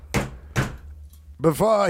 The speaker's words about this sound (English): The Speaker of the House hits the gavel.